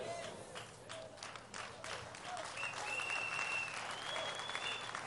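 A crowd claps steadily, many hands beating in a dense, continuous patter that stays loud throughout, with a few faint voices and a thin whistle-like tone rising above the applause.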